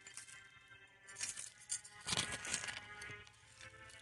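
A sheep bleats in a couple of wavering, nasal calls, the strongest coming midway through, heard fairly quietly on its own with no voices around it.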